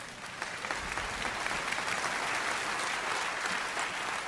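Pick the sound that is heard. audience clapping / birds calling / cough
audience clapping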